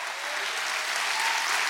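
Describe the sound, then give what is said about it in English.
A crowd stands and claps steadily, a dense, continuous wash of many hands applauding at an even loudness with no voices standing out. “Somebody needs to stand to your feet right now and clap your hands and say, that's what we want in this house, is the presence of Almighty God.”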